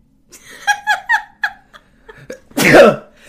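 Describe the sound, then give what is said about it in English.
A brief stretch of voiced, speech-like sounds is followed by a single loud, explosive sneeze, sharply louder than everything before it. “I'm about to sneeze.”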